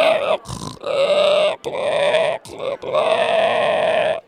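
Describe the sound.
A person imitates a pig with several loud, drawn-out nasal grunts in close succession, separated by brief pauses, with no other talking.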